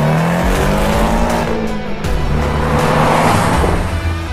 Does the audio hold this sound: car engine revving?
yes